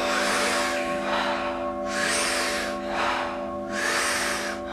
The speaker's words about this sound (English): taking about 40 powerful breaths into the body through the mouth. And the exhale is just a soft exhale. So we're actually bringing in more oxygen than we're exhaling. We do it rhythmically, we do it together, and it sounds like this.